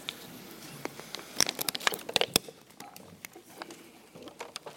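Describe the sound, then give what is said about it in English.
Scattered crisp rustles and crinkles of small white cardstock sheets being grabbed from under the chairs by many audience members, a busy flurry of small overlapping snaps, fairly quiet and spread out, with no talking. “There's a little cardstock, white sheet of paper, and a pen. Would everybody just grab that just for a second?”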